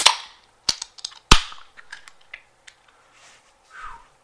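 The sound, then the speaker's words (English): Cans of Broken Goblet beer crack open with three sharp, loud snaps, each trailing a brief fizzy hiss, followed by a few softer clicks and taps with no one talking. “So we want to do the crack?”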